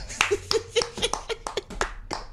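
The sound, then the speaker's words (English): A short burst of applause sound effect: many hands clapping in a dense, irregular patter, fairly loud, lasting a couple of seconds with no talking over it. “Oh, yeah, press. The applause.”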